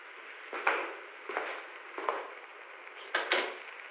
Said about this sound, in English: Close the door, son.